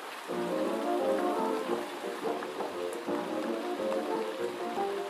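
Gentle night rain falls in a steady, soft hiss throughout, while muffled oldies music with sustained tones plays underneath at a low level from another room.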